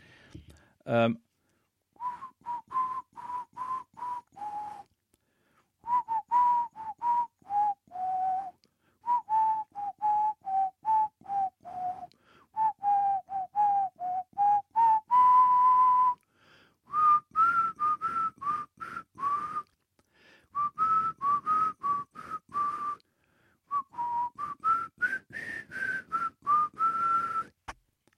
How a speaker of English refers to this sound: I'm going to whistle another one.